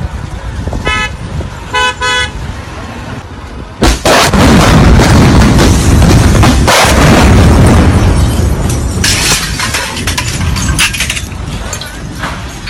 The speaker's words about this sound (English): This is the sound of a 1,000-pound bomb as a guy's rolling down a wide, broad street on his moped. This Israeli bomb hits at his like 11 o'clock on his left as he's on his moped in this little mobile car phone. Cellular car phone video.